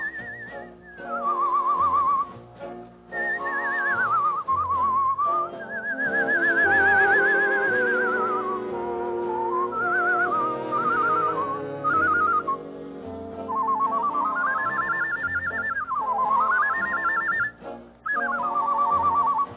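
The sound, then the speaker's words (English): A man whistles a bright, warbling birdsong-like melody with quick trills and gliding notes, loud, carried continuously over a full orchestral accompaniment with no talking. “… was a fellow named …, and he could out-whistle a flock of nightingales.”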